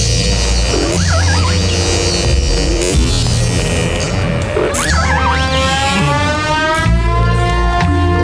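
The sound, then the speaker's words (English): A whale call: wavering, sliding tones that swoop up and down in pitch, repeating several times over a steady low droning hum, with no talking. “Noise, but it's a whale, all right.”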